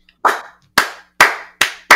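A slow golf clap: five single hand claps, crisp and sharp, spaced about half a second apart and quickening slightly toward the end, with no voices.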